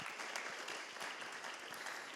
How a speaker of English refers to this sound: Yeah, give Em a round of applause.